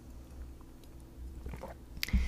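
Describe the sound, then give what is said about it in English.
A quiet sip from a drink: soft wet mouth and swallowing noises, ending with a brief clink, with no one talking. “I'm going to take a little sip here.”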